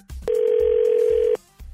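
An outgoing phone call, placed during the Second Date Update segment, rings once: a single steady, mid-pitched ringback tone holds loudly for about a second, then cuts off, with faint low thumps before and after.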